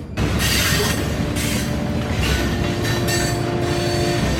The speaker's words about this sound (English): As the old steam engine churned the iron wheels below, I took a seat, pulling forward and then backward, clinging and clanking to the metal rails below me.